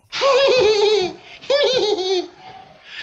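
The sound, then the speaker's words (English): A comic fart sound effect paired with laughter: two loud, wobbling, warbly bursts of about a second each, separated by a brief pause, with no talking. “Here's a laugh and a fart sound.”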